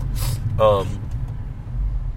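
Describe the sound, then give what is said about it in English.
Steady low rumble of road traffic heard from inside a moving car, continuous and muffled throughout, with a brief voice-like sound rising over it near the start. “This traffic's fucking unbearable.”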